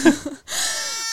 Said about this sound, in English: Oh, the sheep is still with us, so that'll, you'll be hearing her throughout the episode.